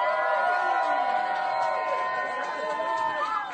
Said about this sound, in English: Let's give a round of applause for the first sale.